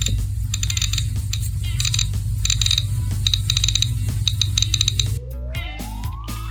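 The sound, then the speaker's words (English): A hair beader toy whirs with a steady low motor drone, punctuated by repeated bursts of rapid high clicking. Near the end the drone drops and a thin whine sweeps upward in pitch. “Oh, that's a hair beater.”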